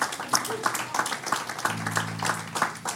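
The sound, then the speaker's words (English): An audience claps together in a dense, steady burst of applause lasting a few seconds, with a low sustained musical tone humming underneath. “Yeah, we can clap that out.”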